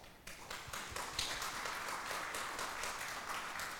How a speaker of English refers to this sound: Can we just get a round of applause?